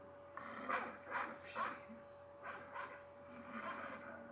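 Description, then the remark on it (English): A dog yelps and whimpers in a string of short, uneven bursts, faint, with a steady electrical hum running underneath. “The dog. It's a fucking freak dog, man.”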